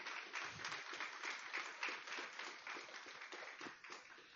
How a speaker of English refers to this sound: Give God a round of applause, church.